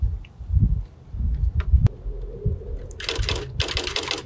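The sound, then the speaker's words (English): Typewriter keys clack in quick, uneven bursts as someone types a line about growth, with a sharp metallic strike near the middle and a couple of brighter, rasping sweeps near the end, moderately loud with no one speaking. “This typewriter sounds a little bit different than like a really old-fashioned fancy one.”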